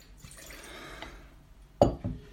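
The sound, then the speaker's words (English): Wine trickles softly into a glass, its faint gurgling tone rising as it fills, followed by two sharp clinks of the glass being set down. “I want to pour another...”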